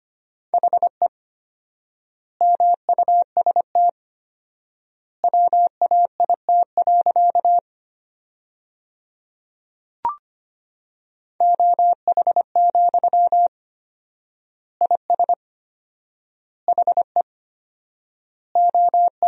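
Morse code beeps at 25 words per minute: a steady mid-pitched tone keyed in quick dots and dashes, sending sentences built from the 500 most common words, with four-times word spacing giving long pauses between words, plus a single faint click midway.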